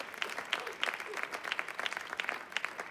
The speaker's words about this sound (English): Let's keep the applause going whilst he comes up.